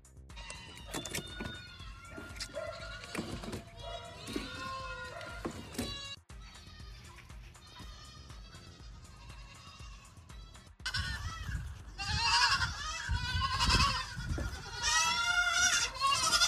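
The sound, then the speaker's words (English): Several goats bleat over and over, their wavering cries overlapping and growing louder and more crowded toward the end, with a few honking calls mixed in. “We went from the goat to a bunch of goats.”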